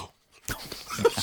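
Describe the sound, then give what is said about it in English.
A brief pause, then a loud, wet slurping gulp of a drink, noisy and breathy with a short squeaky edge near the end. “That was a full, slurp gulp, wasn't it?”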